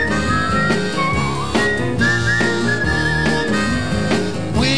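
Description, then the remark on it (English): A bright, wavering whistled melody floats over a full instrumental band, standing out clearly in the middle of the passage before blending back into the steady music. “You can whistle if you like.”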